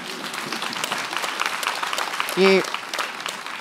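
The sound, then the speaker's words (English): An audience applauds with dense, steady clapping for several seconds, the sound of many hands blending into a continuous patter, with a brief louder vocal cheer cutting through near the end. “My mum paid you for that round of applause, you guys.”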